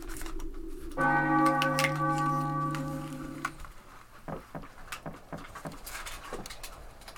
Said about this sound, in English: When yon bell strikes three, under the axe thou shalt be.